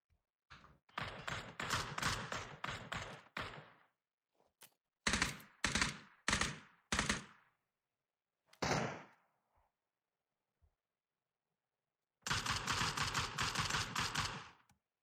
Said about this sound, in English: Who are you motherfuckers shooting at?